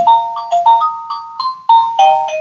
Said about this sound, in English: It's a good sound. Is that the ice cream? I'll be back. No. Oh. My ringtone. For what phone? My doorbell, sorry.